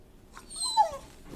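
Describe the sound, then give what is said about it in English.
A dog lets out a single soft whimper, a thin, high-pitched whine that wavers and slides downward for about half a second, with no voices around it. “Tulip is right here.”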